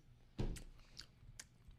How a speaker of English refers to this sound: A little chewing, ASMR happening.